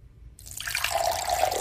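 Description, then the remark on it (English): Water pours steadily into a vessel, a bright splashing stream that starts abruptly and holds a rising, gurgling tone as it fills, fairly loud with no voices. “Well, I have two pouring sounds for you.”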